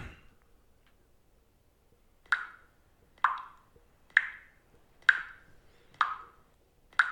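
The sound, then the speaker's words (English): A faucet drips steadily, six clear plops spaced about a second apart, each a short bright pitched drop with a brief ringing tail, alone with no talking. “It's a leak. A leak in a faucet. It's dripping.”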